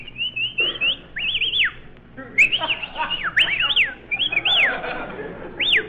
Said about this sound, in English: Now, we may as well whistle at each other.